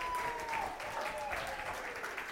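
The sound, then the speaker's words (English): An audience at a church service breaks into a steady round of applause for the worship team, dense overlapping claps filling the sound with a bright crackle, a faint tonal whistle or voice drifting through at one point. “Can we get a round of applause to the worship”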